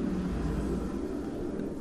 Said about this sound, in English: And here's helicopters.